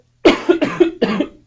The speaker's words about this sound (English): I'm going to cough one more time.